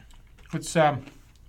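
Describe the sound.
A couple of crisp crunches from a bite of a kettle-cooked potato chip with Asian-inspired soy sauce, sesame, red pepper and ginger flavor, about two years past its date, quickly followed by a short voiced murmur from the person eating.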